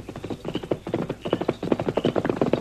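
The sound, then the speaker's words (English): A horse carrying a rider clip-clops along a trail in a steady, rhythmic beat, growing a little louder as it approaches. No voices are heard. “You listen, you hear horse. Trench come along trail behind me.”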